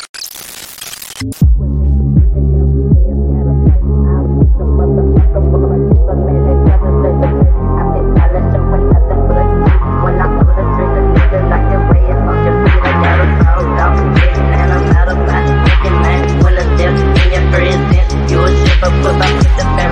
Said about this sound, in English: Yes. The washing machine. I'm sorry. I was going to ask you about it to see if you still had the washing machine going, and it's in the video.